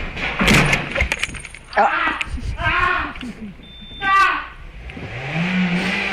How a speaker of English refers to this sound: One of the first things I showed you was one of my all-time favorite clips, a man who is working in a garage, and then a car hits him.